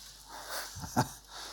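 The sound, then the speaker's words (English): Soft papery rustling as thin Bible pages are turned to Genesis chapter 32 during a church service, a few brief swishing bursts with a slightly sharper flick near the end, faint and with no one speaking. “Bible pages turning, wonderful.”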